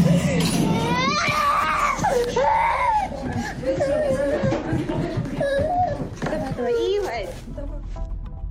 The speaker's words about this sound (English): A Russian jet, sort of on a bombing run, let go of a missile that hits nearby. And you hear a child scream.